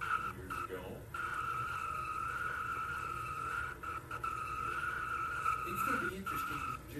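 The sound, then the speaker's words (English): A sustained, high-pitched tire squeal from a race car spinning through a huge double spin, which brings out the caution, runs nearly unbroken for several seconds over a rumbling engine and crowd noise, with brief dips along the way. “One car does a huge double. The caution has come out.”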